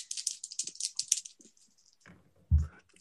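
Hunger dice rattle and clatter briskly for about a second and a half, then settle, followed by a soft thump a moment later; fairly quiet, with no talking.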